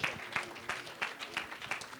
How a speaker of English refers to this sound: Come on, would you give that hand clap to the Lord tonight? Amen. He is truly worthy. I wonder, would somebody lift your voice with your hand clap? Hallelujah.